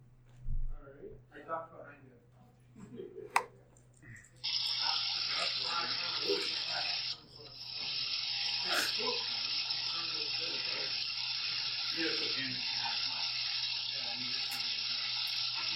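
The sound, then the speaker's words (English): Water from a bamboo shishi-odoshi (deer scarer or boar scarer) fountain runs in a loud, steady rush. It starts a few seconds in, drops out briefly, then resumes. Faint voices and small knocks come before it. “It would help if it was the noise was not drowned out by the running water.”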